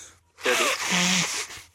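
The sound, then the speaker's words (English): A single nose blow lasting about a second, a loud breathy rush of air with a brief honking tone in the middle, then quiet. “I'm just going to blow my nose.”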